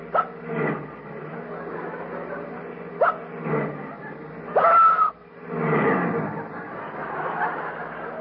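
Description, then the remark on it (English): Someone hiccups repeatedly while driving a car, sharp little vocal jolts arriving at irregular intervals, some louder and more strained than others, over a steady low engine rumble; each hiccup pushes the driver's foot down on the gas. “every time you hiccup, …, your foot goes down on the gas”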